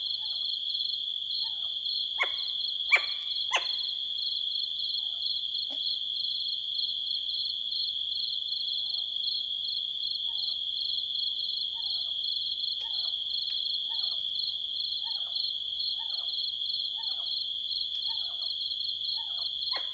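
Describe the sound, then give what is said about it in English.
A western screech owl in the Blue Oak Forest in the foothills of Sequoia National Park gives a series of short, soft hooting notes that speed up like a bouncing ball, over a steady, loud chorus of crickets. “Well, it's really not hooting, but catch the sound of western screech owls.”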